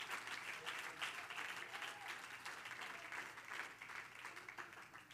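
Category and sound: crowd, audience clapping hands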